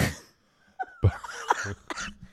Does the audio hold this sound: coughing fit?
yes